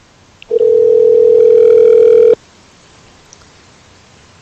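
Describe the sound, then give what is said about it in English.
A single steady ringback tone on a phone line while calling back a number from caller ID, one loud buzzing burst of about two seconds, then faint line hiss and silence while the call waits to be answered. “It's ringing.”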